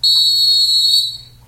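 A single loud, sustained shrill whistle blast, steady for about a second before tapering off, with a faint low hum underneath and no voices.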